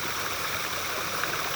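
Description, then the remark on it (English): Steady rushing of a stream flowing over rocks, a continuous bright hiss and babble with no pauses, even in loudness, with no voices. “And like the water that runs over these rocks, just allow the flow to move you.”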